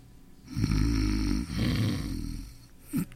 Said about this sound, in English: There must be something that'll put a stop to that hideous snoring.